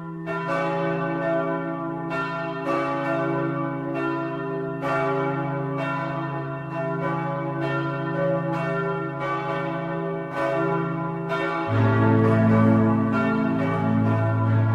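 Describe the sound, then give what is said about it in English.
Large church bells of St. Peter's Basilica in the Vatican, Rome, peal continuously, with strikes landing about once a second over a dense, humming wash of lingering tones. The ringing is loud and full, and a deeper bell joins near the end. “Here are the bells from St. Peter's.”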